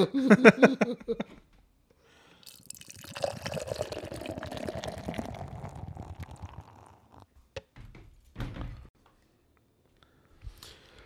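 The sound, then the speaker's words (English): California Sunshine Rye IPA beer glugs and splashes steadily into a glass for a few seconds, the gurgle rising in pitch as it fills, followed by a few soft clinks and taps. “Let's get with the pour for the California Sunshine Rye IPA.”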